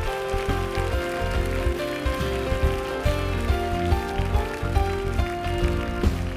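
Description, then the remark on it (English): A church audience claps steadily to give the Lord a hand clap, a dense, continuous patter of many hands that keeps an even loudness throughout, with sustained musical tones, organ or keyboard, underneath. No one speaks. “Give the Lord the greatest hand clap.”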